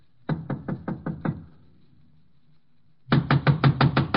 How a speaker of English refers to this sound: I'll give it a knock.